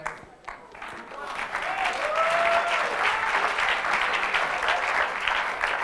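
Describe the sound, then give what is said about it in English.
An audience breaks into sustained, dense clapping that swells after a brief quieter start and stays loud and steady, with a faint voice or cheer threading through the applause. “You have to clap well because you have never preached before.”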